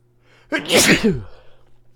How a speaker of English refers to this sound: Four sneezes in a row. No, we don't edit those out because you guys better be saying bless you, honestly.